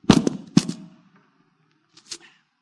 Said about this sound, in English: Drop my hearing aid. No, this is my microphone. Those of you that are listening on radio, I flipped off my microphone on my glasses.